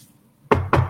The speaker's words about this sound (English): Knock on my plastic desk.